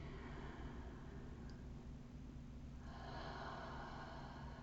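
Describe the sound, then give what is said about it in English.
Slow, deep breathing during a guided meditation, fairly quiet: a long airy exhale, a brief pause, then another long rushing breath, with no talking. “Let's breathe together, breathing ourselves back into our physical bodies.”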